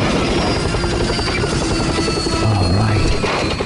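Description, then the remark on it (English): A loud FBI helicopter roars steadily as it lands on merchandise in a store, its rotor thumping in a fast continuous rhythm with a dense wash of engine noise, as if hovering down to land. “FBI helicopter landing on all that Hello Kitty merchandise.”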